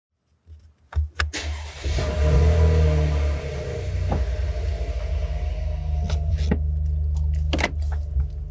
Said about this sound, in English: Hey everyone, welcome to my car. We're gonna go for a little bit of a drive this morning.